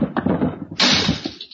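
A man's footsteps run down stairs in a quick series of hollow thumps and taps, then give way to a louder rushing, scuffling burst that trails off.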